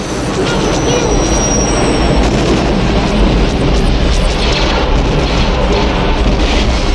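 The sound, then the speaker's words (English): Blaster fire and explosions as a shuttle is pursued and fired upon by three smaller ships form a loud, continuous roaring rumble punctuated by sharp bursts, with a thin high whine running through the first couple of seconds. “The gang in their shuttle are being pursued and fired upon by three smaller ships. Pew pew pew!”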